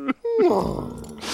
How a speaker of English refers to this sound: I love that shuddering gasp that Miguel takes when they wash up on shore.